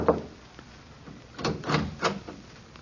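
Three firm, evenly spaced knocks on a wooden apartment door late at night, after a brief thump and a moment of quiet.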